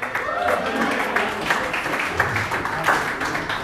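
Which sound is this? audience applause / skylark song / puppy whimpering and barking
audience applause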